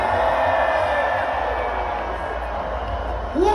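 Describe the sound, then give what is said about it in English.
A huge festival crowd screams and cheers in one loud, sustained roar, a dense wall of overlapping voices that holds steady for several seconds without a break. “Put your hands up in the air and scream.”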